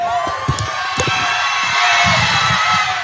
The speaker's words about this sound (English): You heard the crowd in the background. Yeah. I mean, it was an electric atmosphere with Let's Go Buffalo chants happening as we're talking to Josh.